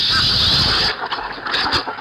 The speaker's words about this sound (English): Well, you see, Mary, every time the car drives for 15 minutes, the water in the radiator boils over, and then it takes...